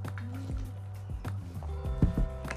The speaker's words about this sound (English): As I hydrate here with my water, I'm a little behind on that.